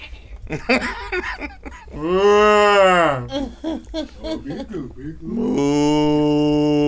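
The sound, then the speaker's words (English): Two drawn-out, loud mooing sounds, likely a person imitating a cow, with brief chatter between them; the first moo rises and falls, the second holds steady until the end. “Sidebar, speaking of moo, I bought the cutest cow print boots.”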